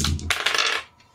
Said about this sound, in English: It's a good thing because all the rest of them were 1, so I rolled a 6.